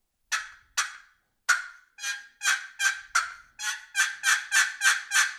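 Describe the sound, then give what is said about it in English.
A turkey call imitating an excited hen's yelping: a string of about fourteen sharp, raspy yelps, starting spaced apart then speeding into a fast, steady run, fairly loud with no talking. “That's excited hen yelping. The pace was a little faster.”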